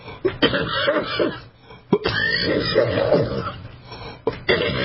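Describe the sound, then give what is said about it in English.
A few harsh coughs spaced out over several seconds, with rough throaty rasping between the bursts and no talking. “Excuse my cough.”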